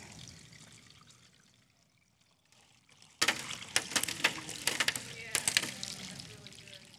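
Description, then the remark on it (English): After about three seconds of near silence, water is suddenly poured into a vessel, splashing and gurgling loudly with irregular bursts until the end. “Watch what happens when we pour it into this vessel.”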